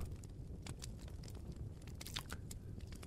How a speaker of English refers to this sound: Well, it's nice and warm in here, and I've got the fireplace going. Oh, yeah. Nice, calm, small fire in the fireplace.